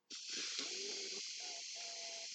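A steady, breathy hiss of air through the nose, with thin, wavering whistle tones riding on it, the pitch shifting partway through before fading into a faint, sustained squeak.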